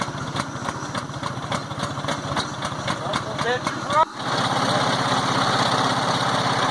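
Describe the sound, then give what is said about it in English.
An old truck engine idles with a rough, steady chugging pulse, then shifts partway through to a denser, more even and slightly louder rumble that continues to the end. “Purrs like a kitten.”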